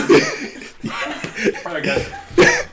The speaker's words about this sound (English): Good time to start coughing.